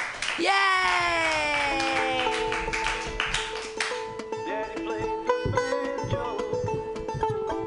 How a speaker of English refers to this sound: Clap wildly.